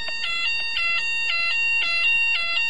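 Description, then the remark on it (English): A fire alarm goes off again, sounding continuously with loud, shrill electronic tones pulsing in a steady repeating pattern about twice a second, with no voices. “There's a fire alarm again.”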